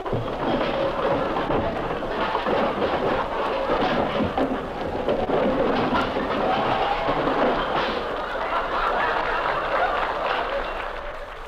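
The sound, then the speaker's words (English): A radio sound effect: an overstuffed hall closet's contents crash out in a long, loud, continuous avalanche of clattering and banging junk, rumbling on without pause for about eleven seconds, with no voices. “The next number on our Recollections of Radio is the most famous sound effect ever broadcast.”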